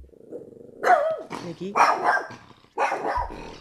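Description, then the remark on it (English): A dog barks in a few loud, harsh bursts, one drawn out with a growly, whining edge, spaced unevenly over a few seconds with no talking. “You're barking at nothing, quite literally.”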